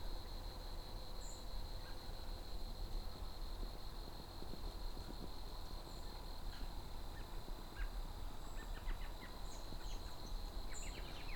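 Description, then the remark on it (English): A faint, quick series of chuckling, laughing-like calls from an American robin, with a few short chirps spread out over a steady insect-like hum and soft outdoor background noise. “Little kind of laughing like calls.”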